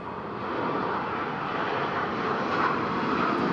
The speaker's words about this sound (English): Well, here's another airplane.